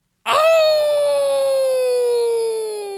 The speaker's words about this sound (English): He even heard wild wolves howling not far away.